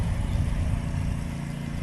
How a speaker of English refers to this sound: Vacuum cleaner. Bingo, a vacuum cleaner. But this is not just any vacuum cleaner. This vacuum has been specially made to be used at the beach.